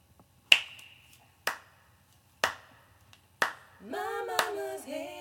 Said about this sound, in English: It's from, an old garage band recording of me at home. I think the baby was little, and I was just clapping and singing.